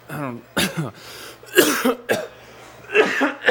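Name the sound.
coughing fit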